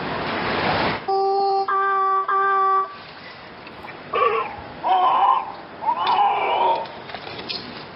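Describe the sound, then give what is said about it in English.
Seal croaking calls over a wash of surf: first a long, steady, droning call broken into three parts, then several shorter, wavering, moaning calls. No one speaks. “It's kind of like just croaking that out.”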